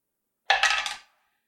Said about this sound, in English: Roll again, because that wasn't an official dice roll. If I get a worse one, I'll go back to five.